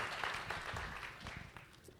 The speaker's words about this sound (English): Yeah, why don't you guys give them a round of applause.